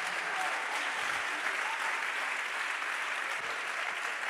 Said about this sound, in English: Oh, somebody clap your hands right now.